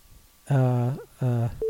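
phone call tone

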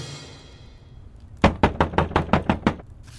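knocking on a door

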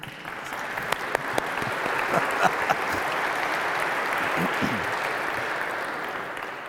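audience applause

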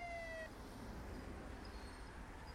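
police car siren

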